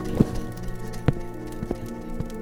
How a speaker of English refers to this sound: Sounds like the rain is stopping.